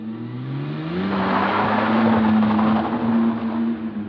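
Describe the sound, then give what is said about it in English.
A car speeds down a street at around 2 a.m., its engine revving and climbing in pitch as it accelerates, with a steady roar of road noise and no voices for about four seconds. “One of them reported hearing a car speeding down the street at around 2 a.m.”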